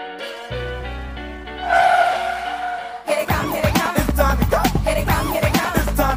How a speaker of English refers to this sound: Just riding along in my car, listening to music.